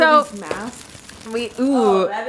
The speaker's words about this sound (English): So that was the sound of 2 N95 masks right by the mic. We are still COVID safe on the pod.